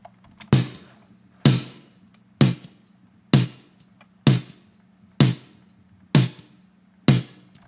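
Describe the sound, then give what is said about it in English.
Eight drum hits land at a steady, even pace in a mix, each a loud sharp strike followed by a short reverb tail, the same shorter reverb used on the kick and toms, that fades quickly, with a low tonal ring lingering underneath. No voices. “First reverb is the same reverb I added on the kick and the toms, which is a shorter reverb like this.”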